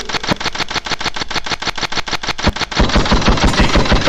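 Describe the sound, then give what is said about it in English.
Loud machine gun fire sound effects in a DJ mix rattle in a steady, evenly spaced burst, then shift into a faster, denser volley of shots that continues to the end, with no voices. “You're gonna hit gunshots in this motherfucker too.”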